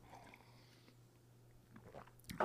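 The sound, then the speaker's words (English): A quiet, quick sip of coffee: soft mouth noises build to a short slurp near the end, over a faint, steady low hum with no talking. “All right, let's have a quick prayer, quick sip of coffee, a little bit longer prayer, and then we'll go about our day.”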